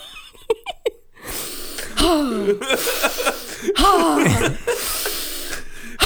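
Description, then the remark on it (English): A voice imitates a donkey's heavy, strained breathing: a few short sharp huffs, then long wheezing, honking inhale-exhale rasps, loud, repeating for several seconds. “Donkeys breathe intense.”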